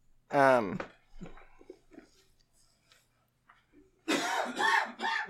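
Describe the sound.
A man has a loud coughing fit: a strained, voiced hack opens it, quiet throaty rasps and breaths follow, then a harsh burst of three rapid coughs at the end.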